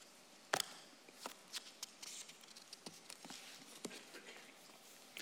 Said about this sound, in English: This is not my day for turning pages.